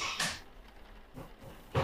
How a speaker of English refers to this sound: That's the car door. Yeah, well, everyone's getting out of their cars.